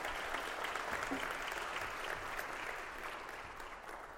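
An audience applauds steadily, a dense wash of many hands clapping at an even level for several seconds, fading slightly toward the end.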